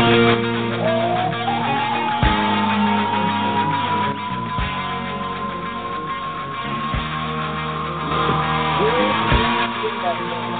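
A rock vocalist lets out a long, sustained high-pitched scream over loud, dense band music with pounding drums, recorded and band-limited like an old track.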